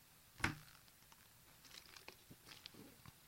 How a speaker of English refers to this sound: I'll sip some water.